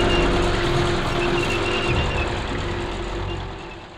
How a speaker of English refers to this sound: Dad, there's a bunch of military trucks coming down the street.